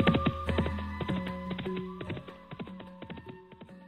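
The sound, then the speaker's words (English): Horse hooves clip-clop in a steady, brisk rhythm as a man who has just mounted the horse rides away, the hollow knocks slowly fading as they move off, with sustained musical tones humming underneath. “He gratefully mounted the horse, waved goodbye. Goodbye. Goodbye, bye. Hi-yah! And rode away.”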